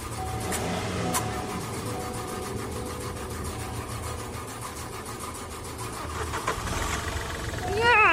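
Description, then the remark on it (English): A van's engine cranks and chugs in a steady, rough rhythm, loud, sputtering without fully catching as someone tries to start it by tapping wires, with a brief rising whine near the end. “The car chugged and chugged.”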